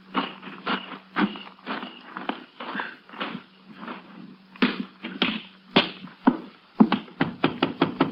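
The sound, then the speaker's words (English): A Texas Ranger knocks sharply on the front door of a house, irregular at first and then coming in quicker, louder bursts toward the end, over a faint low hum with no one speaking. “You go around the back way, and I'll go in through the front. Wait till you hear me knock.”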